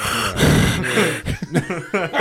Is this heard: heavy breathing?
yes